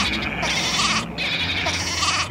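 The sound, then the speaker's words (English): A goat or lamb bleats twice in quick succession, loud, each call a wavering, nasal cry with a brief pause between them and no talking. “It sounded like a goat or a lamb or something.”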